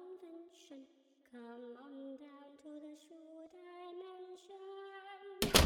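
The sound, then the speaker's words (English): A sustained sung melody with no spoken words plays steadily, then ends abruptly with a single loud thud of a door being shut in a corridor. “You close the door.”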